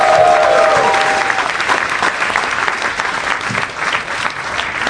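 Sustained applause from a comedy show audience greeting a comic who has been on Comedy Central, a dense, steady patter of many hands clapping at once, loud, with a brief whistle near the start.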